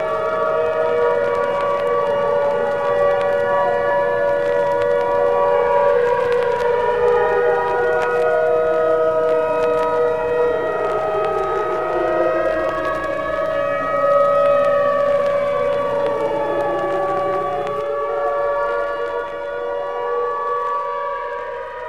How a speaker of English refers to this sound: Walking home from the supermarket, Nye hears the distant song of the fire siren. The fire siren sits perched high atop its red brick engine house, luring firemen away from their families and homes.